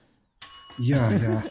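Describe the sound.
A bright bell rings out suddenly and keeps sounding, its high tone lingering while a man starts talking over it.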